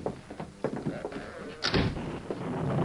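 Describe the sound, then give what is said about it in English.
A heavy wooden door of a building swings open after its latch is lifted and lands with a single loud thud, followed by a low, sustained rumble that fills the background. “He lifted it. The door swung open.”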